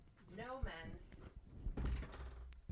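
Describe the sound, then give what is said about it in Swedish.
A short vocal sound, then a door is pushed shut with a muffled, solid thud and a brief rattle, moderately loud, with faint room noise trailing after. “Avslutar de med att stänga dörren.”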